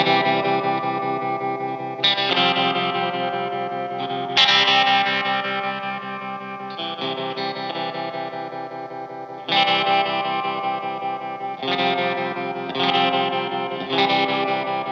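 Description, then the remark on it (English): An electric guitar plays loud, ringing chords through an amp with its reverb set to 10, each strum sustaining into a long, washy reverb tail, with fresh strums every couple of seconds and no one talking. “Why don't you go like 4 or something on the amp? Keep the reverb up?”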